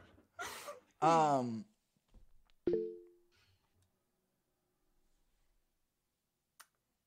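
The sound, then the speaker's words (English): A single short stream chat notification beep, a low steady two-note tone that rings briefly and fades, follows a couple of gasping, breathy vocal sounds. A faint click comes a few seconds later. “Did anybody else hear that weird beep? It was the chat.”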